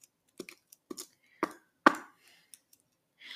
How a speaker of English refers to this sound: Think of the paper. ASMR.